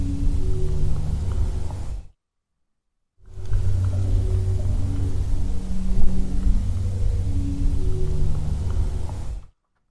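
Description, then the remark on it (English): A steady, low drone of an airplane passing overhead, with humming tonal layers, broken by a short silence before it resumes at the same even loudness. No one speaks. “Yeah, there's a plane in that clip.”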